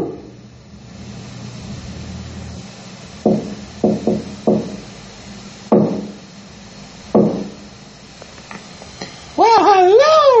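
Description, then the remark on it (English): Several sharp wooden knocks on a door, loud, in irregular bursts over a low background hum, then a warbling, wavering tone rises right at the end. “I hear someone at the door now.”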